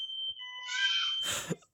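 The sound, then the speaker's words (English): A household alarm sounds a steady, shrill electronic tone in the background, fairly faint, joined near the end by a brief burst of rustling noise. “Have you got an alarm going off in your house right now?”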